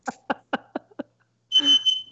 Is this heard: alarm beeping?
yes